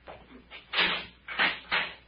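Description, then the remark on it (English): A cell door grinds open in a few rough, scraping bursts, loud, with brief pauses between the pushes. “Get the cell door”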